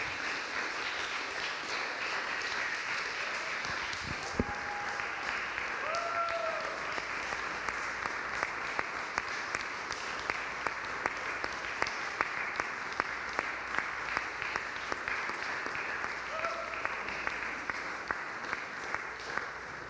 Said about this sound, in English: If we could stand and clap for them, clap for that.